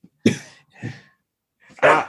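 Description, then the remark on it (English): Three sharp, harsh barks from a dog, the first two close together and the third after a short pause, loud and with no talking underneath. “I forget what I was going to say now that the dog is barking.”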